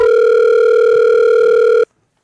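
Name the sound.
phone call ringing tone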